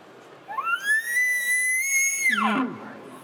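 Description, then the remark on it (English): A single elk locate bugle blown on a bugle call tube: a rising whistle that holds a steady high pitch for nearly two seconds, then drops sharply at the end. Loud. “So here's a locate bugle.”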